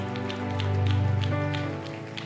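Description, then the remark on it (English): A church audience at a worship service claps steadily in dense, overlapping bursts, with sustained musical tones playing underneath throughout the short stretch. “So let's clap, let's clap, let's clap.”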